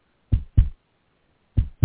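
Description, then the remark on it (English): A heartbeat sound effect introducing the "Happy Heartbeats with Lance Cranston" segment: two pairs of deep, thumping lub-dub beats separated by a pause, loud with no voices. “Happy Heartbeats with Lance Cranston.”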